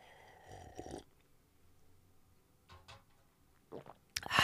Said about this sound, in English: And I'm going to take a sip of my coffee real quick, so why don't you just do the same?